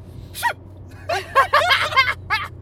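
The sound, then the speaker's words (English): A person does a small, dainty fake sneeze: a quick breathy intake, then a flurry of light, squeaky, airy bursts, soft and high-pitched rather than forceful. “That was like a mouse sneeze, it was or like a girl sneeze.”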